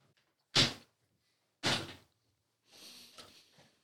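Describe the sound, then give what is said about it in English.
A chair, accidentally thrown, crashes onto the floor with two loud thuds about a second apart, followed by a softer scraping rattle as it settles. “I accidentally threw the other chair on the ground.”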